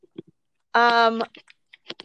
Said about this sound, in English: do you have a dice to roll? I do not. I'm going to let you roll for okay, me. I've got, oh, do you want purple or teal?